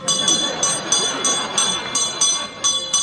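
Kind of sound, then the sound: household object, small handbell ringing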